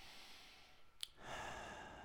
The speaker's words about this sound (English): Now, let's take a couple of deep breaths together. Breathe in through your nose, out through your mouth, as is our daily practice. Well, hopefully you're breathing all day, but conscious breathing, you know.